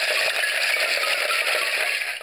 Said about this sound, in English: And then there's some bones, a rattly skeleton.